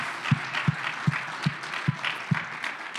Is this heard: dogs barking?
no